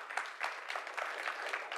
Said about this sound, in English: Do I have any doers in the house? Amen. Come on, clap your hand if you're a doer.